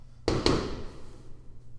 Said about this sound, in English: What was that? Fireworks. Fireworks. I'm like, jeez. Oh, yeah, they're at that one neighbor with the dogs. Don't worry, everyone. It's not a drive-by. It's fireworks.